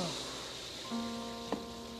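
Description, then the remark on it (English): Water pours steadily into a foot basin for soaking feet, a soft continuous splashing hiss with a faint ringing tone from the vessel, fairly quiet throughout the couple of seconds. “I'll put some more water in here.”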